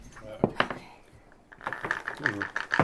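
Dice clatter and tumble across a hard tabletop in quick bursts of sharp clicks as everyone rolls a perception check, while people talk over the rattling.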